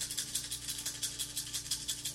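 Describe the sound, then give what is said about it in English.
Eight dice, including three stunt dice, rattle steadily as they are shaken for an attack roll, a quick rhythmic clatter of bright, hard clicks repeating about four times a second at a moderate, even volume, with no voices. “Roll 8 dice because you have your 3 stunt dice.”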